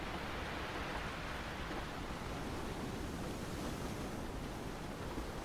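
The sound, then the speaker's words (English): A steady, soft wash of sea waves lapping beside a forest-lined railway track along the coast, continuous and even with no distinct breaks, with no voices. “Rich forests line the track on one side of the train, and the sea lapse away to the other.”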